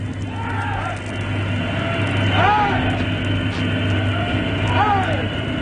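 Three drawn-out shouts of hurrah from the crew of the ship Darsham, fewer than a dozen men swinging their caps aloft, cheering for the Duke of Edinburgh and the Royal Yacht Britannia as they come alongside, rise at steady intervals over a loud, constant engine drone and hum.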